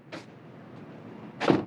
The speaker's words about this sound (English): Oh, the door slam.